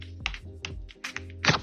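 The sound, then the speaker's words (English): Cardboard flower discs being popped out of a punched cardboard casing during game prep: about five sharp, papery snaps and thunks at an irregular pace, with a low, faint hum underneath and no talking. “Like, you get given loads and loads of different flowers and you have to pop them out of the cardboard casing so that you get little discs, and just popping them out now.”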